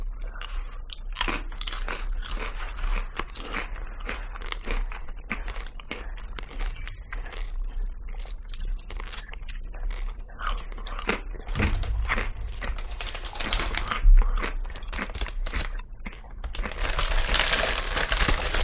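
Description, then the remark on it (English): Loud, crisp crunching of chips double-dipped in hummus with caramelized onions being chewed, a steady run of crackly bites and munching with wet mouth sounds, no talking. “I went straight for the double dip.”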